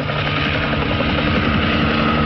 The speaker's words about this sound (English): A helicopter slowly flies over the hill toward them.